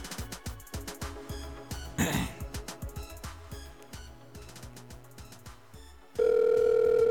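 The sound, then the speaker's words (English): A rhythmic, bass-heavy music bed plays for several seconds, then a loud, steady telephone dial tone takes over abruptly and hums continuously to the end as a call is placed. “Get him on the phone.”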